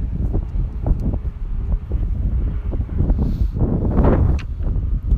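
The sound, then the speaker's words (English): Wind blowing outdoors, a steady low rumble with gusty buffeting against the microphone that swells and rises in intensity toward the end, with no talking over it. “Also, I'm outside right now, so if you hear planes and wind and things, I'm so sorry.”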